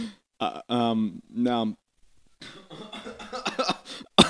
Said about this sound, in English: Don't cough into the microphone, you crazy girl.